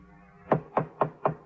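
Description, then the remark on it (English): Five firm knocks on a wooden hotel room door at the Prince Hotel, evenly spaced, each a sharp thud with a short resonant tail, following a brief stretch of quiet. “I got to Gorrell's floor, and when the sergeant was a few steps behind me, knocked on the door.”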